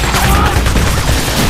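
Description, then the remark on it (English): Dense, continuous anti-aircraft gunfire from the battleship Yamato and her escorts at U.S. planes, a rapid barrage of overlapping booms and cracks that stays loud and rumbling throughout with no pauses. “But even as they do, U.S. planes are hit with nasty AA fire from Yamato and her remaining escorts.”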